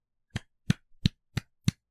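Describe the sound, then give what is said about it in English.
A slow, sparse golf clap: five crisp, evenly spaced hand claps at a steady, unhurried pace, moderately loud with nothing else around them. “Golf clap.”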